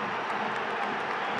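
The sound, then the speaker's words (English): A crowd of fans clapping, a dense, steady patter of many hands that holds at an even level for about a second and a half, with no voices standing out. “Not the clap, a clap of fans clapped him.”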